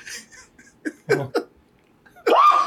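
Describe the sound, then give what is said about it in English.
A few short, sharp catches of breath build up to a single loud, explosive sneeze, with no talking around it. “Gesundheit.”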